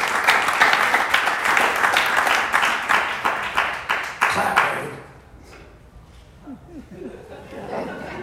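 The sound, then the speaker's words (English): A crowd at a church service claps together in a loud, steady rhythm for about five seconds as a clap for the glory of God, then the applause fades out, leaving near-quiet with a faint voice briefly audible. “I'm going to give you a fish, you single clap like a hand. You clap.”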